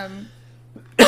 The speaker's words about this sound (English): Yeah, this episode is just going to be a cough fest.